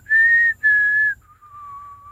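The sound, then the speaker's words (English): Someone whistles the Mockingjay whistle signal tune: two strong, held high notes with a brief gap, then a softer, lower note that trails off. No one speaks. “Can you do the Mockingjay whistle?”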